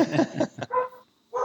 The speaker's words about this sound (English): She's actually just barked at something. There you go. Probably heard us talking about it.